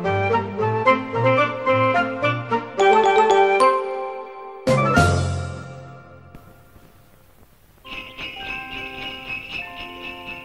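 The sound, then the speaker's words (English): A chiming doorbell in a holiday advertisement for Borden's Eggnog plays a quick run of bright bell-like tones, followed by a sharp ringing crash that fades out, then softer sustained chimes return. No one speaks. “It's holiday time, and Beauregard cries, "Hey, look, there's a snowman ringing our doorbell."”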